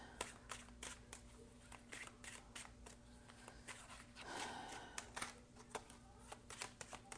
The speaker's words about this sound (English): Nothing coming out face up. Usually when I'm shuffling, things pop out face up. All of these have been face down.